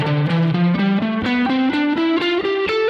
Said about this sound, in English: I'm going to come up here to C at the 8th fret on the 6th string, and I'm going to play through a major scale pattern. This is a 3 notes per string pattern. Here it is picked.